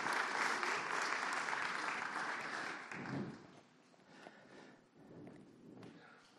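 A crowd claps steadily in a long, dense, loud wash of applause for a woman invited up to the front, holding for a few seconds, then thinning out and tapering off toward the end.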